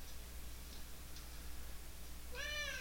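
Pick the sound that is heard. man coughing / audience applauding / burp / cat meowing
cat meowing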